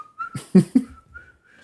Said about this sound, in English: That whistle song?